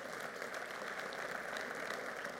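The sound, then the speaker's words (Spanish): An audience applauds for the Heavenly Father during a Spanish-language sermon, many hands clapping together in a dense, even wash of sound that stays at a constant level throughout, with no voices audible. “Podemos dar un aplauso a nuestro Padre Celestial por ello.”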